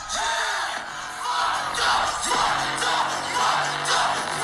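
A large concert crowd at Rolling Loud yells and cheers continuously as two rappers are reunited, a dense roar of voices with bursts of whoops swelling every second or so, loud and sustained throughout with no single voice standing out.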